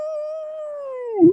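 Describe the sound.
A dog lets out a single sustained howl, holding a steady mournful pitch before dropping off abruptly with a brief louder break at the end. Clear, with no talking.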